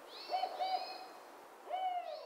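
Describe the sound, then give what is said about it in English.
A spotted owl hoots in a short, uneven series of three notes, the last after a brief pause. The calls are clear and moderately loud against a quiet background, with no talking. “Creates great hunting grounds for species like spotted owls.”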